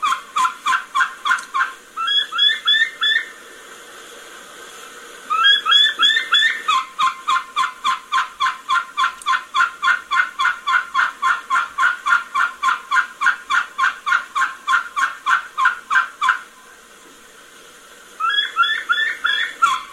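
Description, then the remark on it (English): A wild turkey hen gives a long series of rapid, whistled kee-kee calls in spring, repeated in quick rhythmic bursts with brief pauses, clear with no talking. “And all hens do it. If they're going to key-key in the spring, there's a lot of variations in there.”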